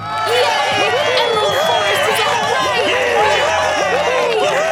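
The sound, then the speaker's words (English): A large crowd of animals in Emerald Forest cheers and shouts nonstop after a forest fire is put out, many overlapping voices rising and falling in excited whoops, loud throughout with no pauses. “Cheering broke out like waves, each one higher than the other.”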